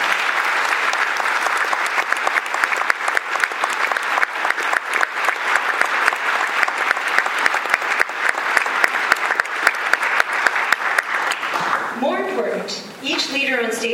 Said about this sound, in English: Each person sitting here, and again, thank you all for being here, each person sitting here is a community leader, a person who has made a measurable, positive difference in the quality of our city. Let's thank them with our applause for all of them.